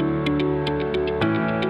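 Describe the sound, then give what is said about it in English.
A 5-minute stop clock ticks in a quick, steady rhythm, crisp clicks layered over a sustained musical drone. No one speaks. “I have given him a 5-minute stop clock for him to get on his soapbox and talk to you about cognitive dissonance and self-justification.”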